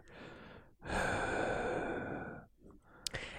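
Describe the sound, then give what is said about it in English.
Heavy breathing right against a microphone shared by two men: a short inhale, then a long, loud, noisy exhale like a sigh, followed by a quieter breath and a small click. “Just two dudes just sitting here breathing on the same mic.”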